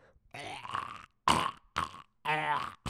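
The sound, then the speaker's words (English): A person imitates a cat hacking up a hairball: a long raspy, retching burst followed by three short, harsh gagging heaves, loud and throaty. “That's a kitty cat coughing up a hairball.”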